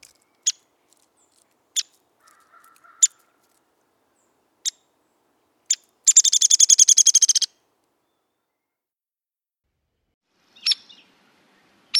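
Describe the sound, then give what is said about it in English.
Sharp, high pick notes repeat sparsely, then a rapid descending whinny rattles for over a second before more isolated picks — a Downy Woodpecker calling clearly, with no voices. “First is Downy.”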